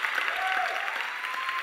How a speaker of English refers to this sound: Y'all clapping like you didn't hear me.